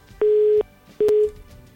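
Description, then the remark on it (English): Two loud, steady electronic beeps of a telephone busy tone on a failed phone call, each about half a second long with a short pause between, with no voices. “Now, when these phones start to misbehave like this, I start looking at myself.”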